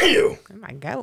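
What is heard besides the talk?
sneeze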